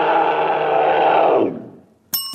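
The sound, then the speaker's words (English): A mountain lion, a North American big cat, calls: one loud, raspy scream held for about a second and a half, sliding downward as it fades, followed after a short gap by a brief, bright tonal burst. “Mountain lion is correct, yes.”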